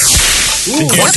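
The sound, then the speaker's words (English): A sharp, whip-like towel snap cracks once near the start with a quick swishing rush, followed by a brief rising-and-falling vocal exclamation. “Maybe a little prison towel snap?”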